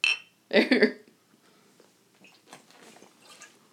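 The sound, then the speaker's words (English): Glasses clink together in a toast, first a short bright ring, then a louder, fuller knock half a second later, followed by quiet voices murmuring in the background. “All right, cheers again. That was so not loud. Do it again. Hit the glass, not the label.”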